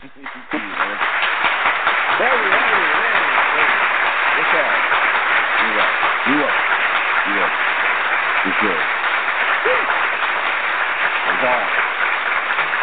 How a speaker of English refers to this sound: Everybody, can we get a round of applause right here? People are cheering.